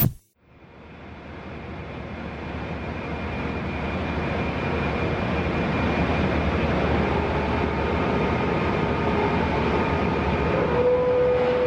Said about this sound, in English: You're listening to the sound of American manufacturing at work. At the Charter Steel Plant in Saukville, Wisconsin, just outside of Milwaukee, magnetic cranes scoop up giant fistfuls of scrap metal and dump them into massive hoppers.